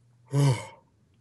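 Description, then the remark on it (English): A single short yawn, a breathy, voiced exhale that swells and then fades over about half a second, with quiet low hum around it. “Do one yawn right now. I'll yawn with you.”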